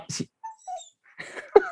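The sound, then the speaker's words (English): A dog whimpers and cries close by, with a few short, thin, high-pitched whines between snuffling and rustling bursts, no voices present. “She picks up her pig's ear that she likes to eat, and she just walks around the house crying.”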